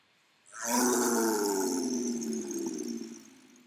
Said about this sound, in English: And at that moment, you hear the roar of a tiger. And it's almost the only non-diegetic sound. And that tiger, and the tiger roars, like this tiger on his blanket, like actually, you know, goes, wow.